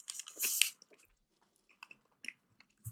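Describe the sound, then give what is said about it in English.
Wet chewing of a sticky marshmallow treat: a loud crunchy bite burst up front, then scattered soft smacking and squishy mouth sounds tapering off, with no talking. “It's delish.”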